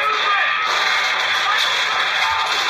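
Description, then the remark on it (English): Loud, continuous audio from the video game Call of Duty 5: World at War being played at a presentation: a dense wash of hissing, crackling noise with sharp whip-like cracks and whooshes layered over it, steady for the whole stretch and with no clear speech. “That is the sound, the dulcet tones of Call of Duty 5 World at War being played.”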